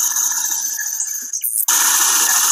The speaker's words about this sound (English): saying yes over the layer of rapid machine gun white noise that comes from sweeping in reverse.